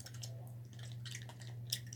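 Wet, smacking chewing sounds repeat close to the microphone in an uneven rhythm over a steady low electrical hum, with one sharper crunch near the end and no talking.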